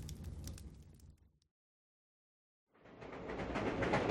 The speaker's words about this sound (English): There's a train leaving Charing Cross in 20 minutes, or we can take the next one if you gentlemen need more time to pack your belongings.